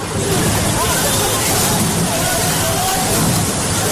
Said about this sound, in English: Okay, you actually hear the sounds of the oars in the water, that rowing sound.